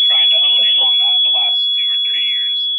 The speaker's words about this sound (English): All right, hang tight 1 second. We're having a little smoke alarm issues in the hotel. It's crazy. They're off now, so I think we're okay for the moment.